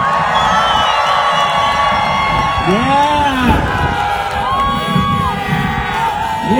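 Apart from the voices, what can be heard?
crowd cheering outdoors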